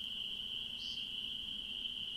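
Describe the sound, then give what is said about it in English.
Steady, high-pitched cricket chirring fills the night air in a swamp without a break, joined by a faint low hum and a brief brighter insect buzz partway through, with no voices present. “Anyways, what we were saying, we're recording out in the swamp tonight because we want to record more things outdoors.”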